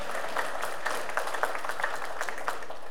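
Steady applause from an audience for the speaker's wife, many hands clapping in a dense, continuous patter with scattered sharper claps, moderately loud throughout and no one speaking.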